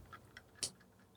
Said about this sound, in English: I have no idea what that is. Is that a clock? Sure sounds like one. Went away. That was That was odd.